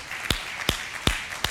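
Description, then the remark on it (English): An audience claps: four sharp, evenly spaced claps stand out in a steady rhythm over a soft, continuous wash of scattered applause, with no voices. “Go ahead and clap.”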